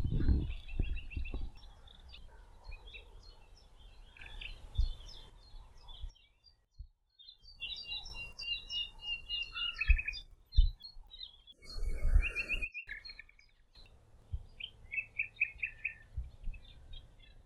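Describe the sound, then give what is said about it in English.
A nightingale sings in varied, rapid phrases of chirps, trills and whistles, pausing briefly between bursts, with low rumbling handling noise and faint background ambience underneath. “Just found a nightingale.”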